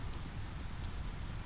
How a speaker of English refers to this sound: A little while later, I feel rested enough to set about building the fire, sheltered from the rain by a makeshift canopy I had thankfully installed prior to the weather's turn.